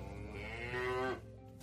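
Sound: cow mooing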